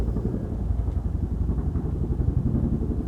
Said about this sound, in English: Here's what it sounds like to be outside with the helicopters.